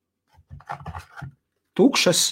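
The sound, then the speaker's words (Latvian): A voice speaks briefly, then small empty paper boxes for 18650-size batteries are handled, giving a loud, dry papery rustle and scrape that lasts about half a second. “Tukšas papīra, 18650 izmēra tukšas kastītes.”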